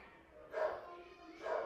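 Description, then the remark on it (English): A dog barks twice, two short muffled woofs about a second apart, faint against a quiet background hum. “Tumatakol yung dog. Rinig niyo ba yon?”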